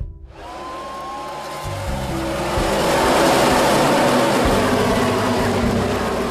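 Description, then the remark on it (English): Race car engines roar as the drivers race into their fifth lap around the track, in a dense, continuous wall of noise that swells louder after a couple of seconds and stays intense, with no voices. “By the time the drivers were roaring into their fifth lap”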